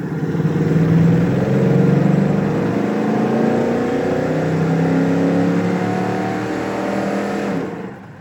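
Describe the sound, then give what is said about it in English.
A Ford Bronco on BF Goodrich All Terrain tires revs hard under heavy acceleration in first gear, reaching about 60, its loud, steady roar climbing in pitch for several seconds before easing off at the end, heard from inside the vehicle. “Can I still punch it? Sure you can. Do it.”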